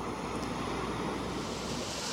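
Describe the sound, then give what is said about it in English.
A steady, continuous rush of lower-frequency pink noise from a sleep sound machine, deep and whooshing like ocean surf, holding an even volume for the whole stretch with no voices. “At his offices, we sampled an array of machines, emitting everything from basic white noise. Sounds a little bit like a fan. Right. To so-called pink noise.”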